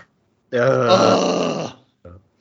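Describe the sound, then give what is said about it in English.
A single loud, voiced sneeze lasting about a second with a strained, throaty tone, followed by a brief short noise and then quiet. “Bless you. Your soul is safe again.”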